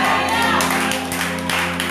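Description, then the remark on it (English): A crowd claps for God in a dense, continuous patter, loud and steady throughout, with a low electrical hum underneath. “Give God a better clap than that.”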